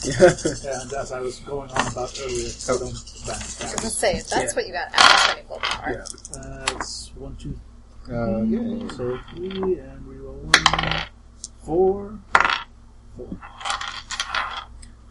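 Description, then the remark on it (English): A handful of dice, rolled for an intelligence plus medicine check on cleaning a wound, clatters and tumbles across a hard tabletop in several bright, rattling bursts, with people talking in between. “I'm going to spend a willpower to get another 3 more dice, just because little girl.”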